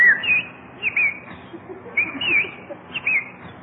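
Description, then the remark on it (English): A bird on a lawn on a sunny day chirps and whistles in short, bright bursts, a few quick phrases recurring roughly every second over a faint low background murmur. “Oh, Jack, look at that beautiful bird on your lawn.”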